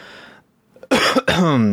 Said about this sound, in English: I can't help but cough all the time now. I'm not cutting this crap out anymore.